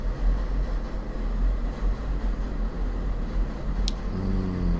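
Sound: train passing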